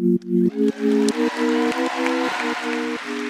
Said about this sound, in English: Let's give a round of applause for Hari Kondabolu. He's a comedian and writer, a podcast host, and his new documentary is called The Problem with Apu.